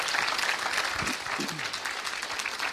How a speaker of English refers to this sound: Can somebody clap your hands and say amen? Could you do that?